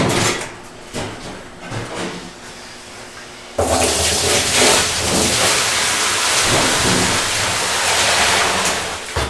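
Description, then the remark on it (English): Soft rustling and clinking give way to a loud, steady rushing as liquid is poured into a container while a batch is being made and its pH adjusted, the pour continuing without pause until the end. “Yeah, you can pour those in and I'll get my, let's see, probably the easiest way.”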